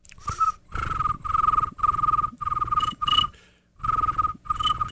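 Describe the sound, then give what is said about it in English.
A person mimics a cricket with their voice, making about seven buzzy, trilling chirps in a steady rhythm, fairly loud, with one brief pause partway through. “I can do a cricket.”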